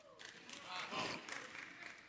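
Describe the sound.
A short burst of scattered clapping from women in an audience during a sermon, with crowd murmuring and a few raised voices mixed in, swelling briefly in the middle before easing off.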